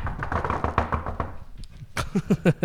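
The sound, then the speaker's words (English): A flurry of knocks on a wooden surface: quick, overlapping raps at first, then about five louder, distinct knocks in an uneven rhythm near the end, fairly loud. “Knock on wood if you're with me.”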